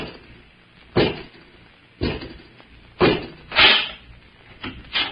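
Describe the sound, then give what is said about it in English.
A door being opened by Robot 2, a mechanical man servant, marked by a series of heavy clunks and thuds spaced roughly a second apart, with a faint hollow rumble between them and no voices. “Robot 2, open the door.”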